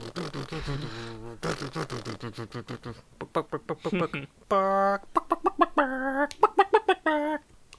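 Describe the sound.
A chicken clucks in quick, choppy bursts of short calls, fairly loud, with a couple of longer drawn-out squawks in between.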